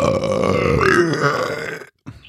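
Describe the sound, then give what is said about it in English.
A long, loud, gravelly burp rumbles for nearly two seconds, its pitch wavering, then cuts off into a brief silence before a faint voice begins. “Just that burp?”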